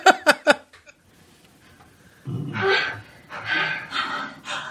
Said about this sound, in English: If I solo the ADR, it's going to sound kind of silly, but these actors came in and did this because they got paid to do it. And here it is. You'll hear them. So they're just breathing.